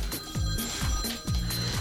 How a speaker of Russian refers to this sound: Звонок. Он звонит. Ой, слушай, слышно причем.